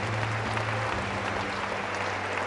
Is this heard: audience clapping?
yes